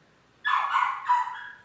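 A dog barks in two quick, back-to-back bursts after a moment of near silence. The barks are fairly loud and slightly drawn out, with no one talking.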